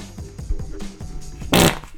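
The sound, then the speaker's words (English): A loud fart: a run of low sputtering pops builds into one harsh, blaring burst near the end before trailing off. No one speaks. “Hold on, I got to fart”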